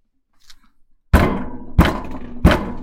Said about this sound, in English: So instead of... nice, peacefully, hey, I'm not trying to rob your house, knocking on the door. You're going to bang your fist up against the door, like, hey, open it up.